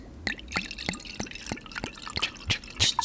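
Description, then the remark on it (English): Rosé wine being poured into a glass, with a steady series of quick glugs and splashes repeating every fraction of a second, no voices. “Yeah, I didn't realize you were pouring up summer water.”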